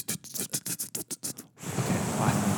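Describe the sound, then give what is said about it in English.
Outdoors on a windy day: a quick series of about ten scratchy, rustling bursts, then a brief pause and a steady, loud roar of wind buffeting the microphone with a low rumble underneath. “It's windy out.”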